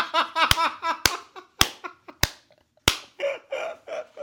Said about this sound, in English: You probably shouldn't clap like that. People listening are probably having their eardrums burst, but that's pretty funny.